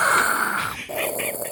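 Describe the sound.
A voice imitates a mechanical respirator, making a loud, hissing inhale that shifts into a raspy exhale, a single heavy breath cycle with a brief pause in the middle.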